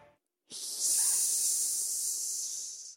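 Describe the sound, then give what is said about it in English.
A Madagascar hissing cockroach gives a single sustained, airy high-pitched hiss lasting a few seconds, steady and fairly loud, cutting off abruptly with no voices present. “Madagascar, where all the roaches can hiss together.”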